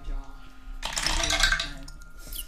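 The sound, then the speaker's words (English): A handful of dice, rolled all at once, tumbles across a table in a bright, rattling burst of clicks and clinks lasting about a second, over a low background hum and faint murmuring. “It sounds so good when there's multiple dice.”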